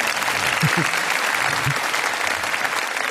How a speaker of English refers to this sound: Give her a round of applause, ladies and gentlemen. Here she comes.